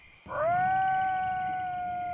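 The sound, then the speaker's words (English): A coyote howl on a golf course at night swells up quickly and then holds one long, steady, piercing note, loud, with no other voices around it. “Coyotes howl on the golf course and you nearly jump out of your shoes.”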